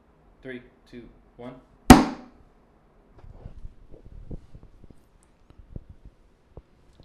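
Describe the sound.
Drinks, a can and a glass, are knocked once, sharply, on a tabletop before a toast, ringing briefly after three short voiced syllables, followed by soft low murmuring and a few faint clicks.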